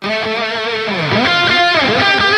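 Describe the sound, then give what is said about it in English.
A distorted lead electric guitar played through a Helix, EQ'd to sound more mid-range, plays a short melodic phrase with bends and sliding notes. Its tone is bright, mid-heavy and thickened by effects, sustained at a steady loud level with no voices. “that's what it sounds like by itself. But I have a double tracker on here.”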